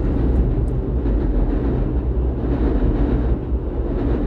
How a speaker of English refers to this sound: Train